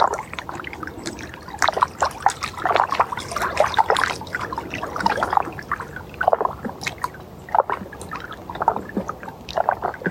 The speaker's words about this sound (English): Can you feel the melody of the water?